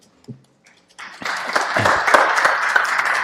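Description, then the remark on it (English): A crowd bursts into applause for a volunteer after a brief low thump, the dense crackle of many hands clapping rising quickly and holding steady and fairly loud to the end. “Big hand of applause for”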